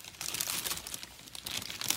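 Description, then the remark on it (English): Steady rustling and crinkling of a mailbag for about two seconds, a dry, hissy texture with small irregular bursts and no voices. “And now I'll just pop my head out of the mailbag for a second. Nope, straight back in.”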